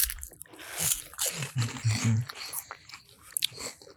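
Crisp crunching of apple pie flavored chips being chewed, a steady run of crackly bites with soft wet mouth sounds and a low hum underneath, no talking.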